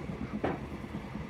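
A moving train rumbles steadily along the rails, a continuous low mechanical roar with one brief, brighter clank or rush of noise near the start. No one speaks.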